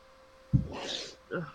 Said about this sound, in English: It's a sneeze. He'll just say, sounded like a duck. Yeah. It sounded like a duck being abused. Are you choking the chicken over there? No. That's really it. I just imagine somebody grabbing the duck by his neck and it making that noise.